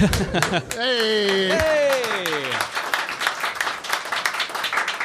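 Applause from a live show audience, a dense patter of many hands clapping throughout, with a drawn-out, falling vocal cry rising over it near the start before the clapping carries on alone.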